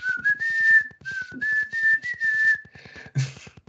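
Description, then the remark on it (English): A person whistles a short melody from a song, a clear sustained tone that glides and steps between nearby pitches, with breathy airy noise around it and no talking. “Yeah, my buddy at work, he whistles it every once in a while.”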